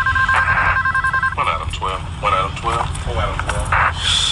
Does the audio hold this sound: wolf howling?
no